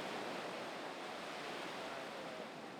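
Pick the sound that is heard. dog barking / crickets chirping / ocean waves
ocean waves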